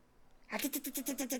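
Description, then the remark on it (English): A person imitates a raccoon's chittering with a quick, rhythmic series of about eight bright, raspy pulses, fairly loud after a moment of near silence. “What does a raccoon say?”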